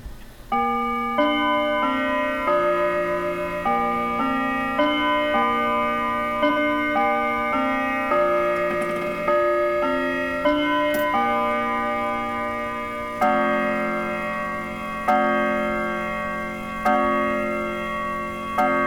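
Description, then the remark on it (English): An analog clock chimes a ringing melody of bell-like tones at 12 noon, then begins striking the hour with slow, evenly spaced resonant bongs that each linger and fade. Fairly loud, with no voices. “As you may have guessed, it was 12 noon when I made this recording.”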